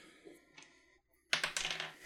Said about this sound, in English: Sorry, hold on. I just dumped half my dice on the floor.